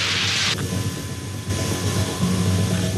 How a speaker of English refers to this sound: That's like you're fucking doing a chase through underground tunnels in a plane. Yeah, seems tense.